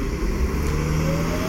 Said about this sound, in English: And now I'm just sitting on a bus depot bench. Bus just actually pulled up. There's actually people starting to ride the bus again. Everybody wearing masks.